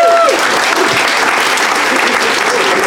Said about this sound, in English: Round of applause for everybody in the audience who gave us their problems. Yeah, thank you.